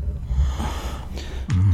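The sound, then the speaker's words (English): Heavy open-mouth breathing into a microphone, a steady, breathy rush with low rumbling pops, ending in a louder, gasp-like huff near the end. “Breathe, open mouth breathing,”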